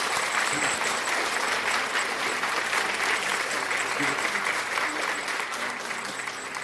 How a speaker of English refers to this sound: Oh, give a big clap unto Jesus. Give it to him. Give it to him. Give it to him.